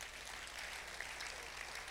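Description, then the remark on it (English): An audience claps for the Lord Jesus together in a steady, dense patter of many hands, a continuous crackling wash with no talking over it. “Clap for the Lord Jesus.”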